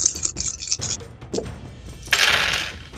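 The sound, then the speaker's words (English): Several dice are rolled across a hard tabletop by players rolling for toughness or agility in a game: a flurry of quick, sharp clicks, a brief pause, then a longer rattling tumble. Moderately loud, with faint voices in the background. “I need everybody to roll toughness or agility. Two more dice.”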